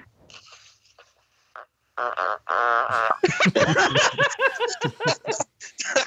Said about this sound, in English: Are we playing Cena's music or are we playing audio of the fart? No, I got audio of the fart. Okay, here it is.